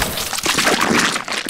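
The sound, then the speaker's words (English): A loud, wet splat of thick orange goop hitting hard against glass, followed by a dense, sloshing spatter as it sprays wide across the glass for a moment. No one speaks. “The goop jolted at the glass between them and hit it hard, making a wide orange splatter spray the view between them.”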